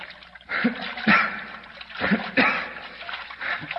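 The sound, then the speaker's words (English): Water sloshes and splashes with irregular surges of churning as a swimmer moves through it, holding a limp person's head above water, the splashes swelling and fading over a few seconds. “And then I'll keep his head up above water.”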